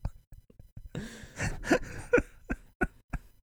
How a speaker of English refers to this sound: Yo, real talk, never heard a stomach rumble as loudly as that. Well, you haven't met my stomach. I guess not. I call him Mr. Big Noise.